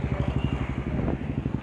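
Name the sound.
loud motorcycle passing by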